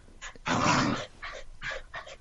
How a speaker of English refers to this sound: As you can hear, Nemo off in the background growling or something.